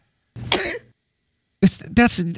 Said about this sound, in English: That's not a sneeze. No, it's not. Are you coughing? And that's amplified. Well, that's because people are always confused. It's a combo. Do it again. Cough, sneeze.